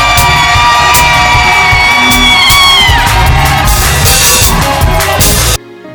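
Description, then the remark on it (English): A large crowd screams and shouts praise all at once in a loud, sustained roar of whoops and yells, voices overlapping continuously for several seconds before cutting off abruptly near the end. “Praise Him. Scream it out. Release in Jesus' name.”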